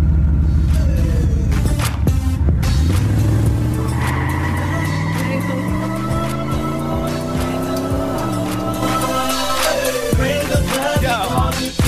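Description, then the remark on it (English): A car engine is cranked and roars to life, revving hard, its pitch climbing and dropping in repeated surges over a steady loud rumble, with no one talking. “As you hear the car being crunk, I have to get up out of here.”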